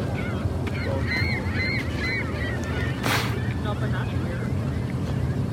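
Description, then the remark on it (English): A flock of seagulls squawks noisily with repeated overlapping cries, set against a steady low rumble of wind and engine noise, with a brief rushing gust partway through. “Oh, the birds are getting noisier.”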